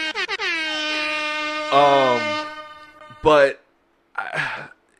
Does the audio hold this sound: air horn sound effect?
yes